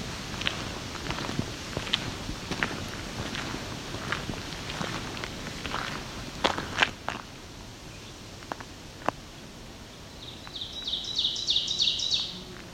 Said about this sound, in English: Okay, we're gonna have an oven bird up here.